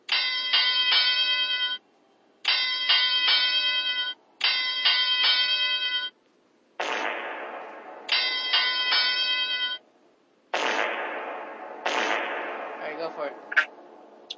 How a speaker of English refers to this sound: So, are you ready for some wrestling? Hit that bell, baby.